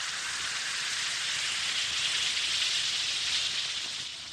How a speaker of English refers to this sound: Well, the thing to do is reach for the Alka-Seltzer. Drop a tablet or two in a glass of water like this. Listen to it fizz.